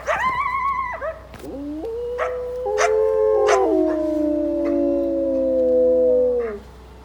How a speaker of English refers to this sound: Give this a listen. The higher pitched yipping and barking with the drawn out yip yip yip howl is the coyotes. The long drawn out howl is our two wolves harmonizing with each other.